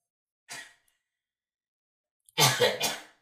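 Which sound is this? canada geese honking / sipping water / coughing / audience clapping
coughing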